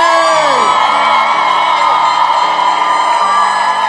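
A church audience erupts in loud, sustained cheering and whooping, making 'Holy Ghost noise', with many voices yelling over a dense wash of clapping that holds steady throughout, as Bishop Richard Aye is welcomed to the pulpit.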